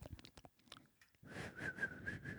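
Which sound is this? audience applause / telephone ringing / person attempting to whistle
person attempting to whistle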